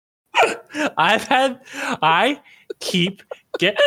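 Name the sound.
hiccup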